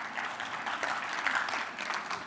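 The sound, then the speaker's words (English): A large audience claps steadily, a dense, continuous wash of applause at moderate loudness with no voices standing out. “Every one of you just summited Everest. Give yourself a round of applause.”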